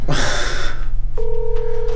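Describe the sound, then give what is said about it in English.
A phone call's ringing tone starts after a short bright electronic chirp, a steady, clear electronic tone held continuously to the end over a low background hum, as the called person does not pick up. “Oh, 1 second, it's ringing.”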